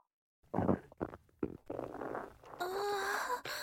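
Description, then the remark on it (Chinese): A small fart in an elevator: a few short, low sputtering bursts, then a longer squeaky, whistling stretch that wavers in pitch before cutting off. “哎呀，肚子好痛啊，电梯里好臭，好想好想放屁啊。好像出来了一点点啊。”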